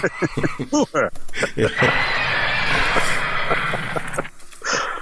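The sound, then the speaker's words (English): Horses neigh and whinny loudly in a burst of shrill, wavering calls, followed by a long noisy stretch like snorting and commotion, with a final whinny near the end. “I got to use the Frau Blücher horses three times in the last podcast”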